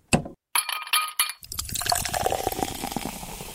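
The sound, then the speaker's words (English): A few sharp glass clinks ring out, followed by a steady fizzy pour of Canada Dry ginger ale into a glass that continues to the end. “Time for a quick break and a glass of Canada Dry ginger ale.”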